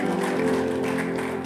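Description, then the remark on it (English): An audience claps to celebrate God in a steady, dense wash of applause that holds at an even level throughout, with sustained musical tones humming underneath. “Celebrate God with a good clap.”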